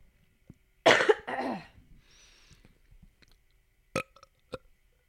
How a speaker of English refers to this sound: These are not impressing me. The burps? Mm-hmm. Yeah, usually I'm chugging beers during the pod.